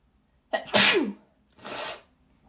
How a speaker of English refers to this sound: Do I have to sneeze again? Are you fucking serious? We're getting sentimental here. Yes, I do.